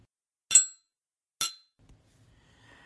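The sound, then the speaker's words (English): Two glasses clink in a toast to the Fatherland in a hotel: two bright, ringing clinks about a second apart, each with a sharp high-pitched chime that fades quickly, followed by faint low rustling and a soft hum. “I give you a toast to the Fatherland, Müller.”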